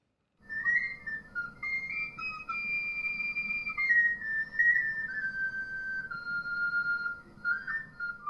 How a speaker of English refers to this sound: So much so that people produced entire books of music to train bullfinches to whistle particular tunes. You could either whistle to them yourself, or you, if you were a flageolet player, you could play these tunes.